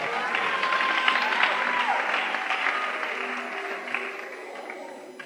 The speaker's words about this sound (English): Clap for the girl.